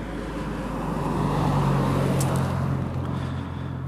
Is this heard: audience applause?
no